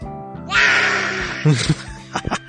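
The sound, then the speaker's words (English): A child lets out a loud, raspy roar imitating a dinosaur, drawn out for about a second, followed by a few short breathy vocal bursts. “How's the dinosaur go?”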